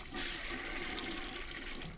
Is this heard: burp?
no